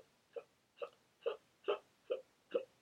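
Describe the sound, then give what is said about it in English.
A voice imitates hiccups: six short, voiced hic sounds in a steady, evenly spaced rhythm, moderately loud, with no other talking. “It was, like, this one girl who had hiccups for her entire life.”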